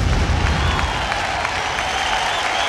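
applause sound effect

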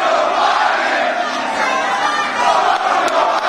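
crowd chanting

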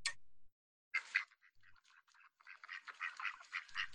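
ducks quacking

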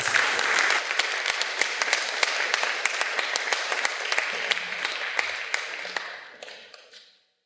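audience applause

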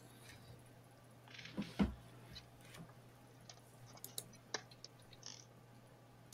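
dice rolling

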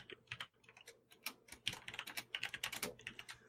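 clacky computer keyboard typing

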